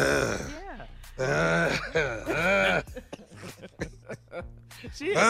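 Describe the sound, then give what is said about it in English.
Strained heavy breathing and gasps, many of them voiced like groans, come in a string of uneven bursts, with sharp short catches between longer rasping breaths and a loud one at the end. “At the end, there was some different kind of breaths at the end.”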